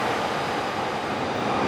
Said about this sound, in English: Oh, there's a bit of a view here over by where the super loud train is.